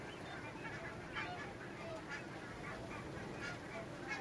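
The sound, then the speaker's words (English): A large flock of barnacle geese honks continuously, many overlapping yelping calls blending into a steady chorus with no voices present. “As for the barnacle geese, I think the nature reserve warden said they'd had one that was 36.”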